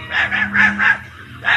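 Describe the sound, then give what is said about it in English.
Toto, Dorothy's small dog on a farm in Kansas, barks in a quick run of four sharp yaps, pauses, then gives one more bark, loud over a low background hum. “Her dearest friend is her dog, Toto.”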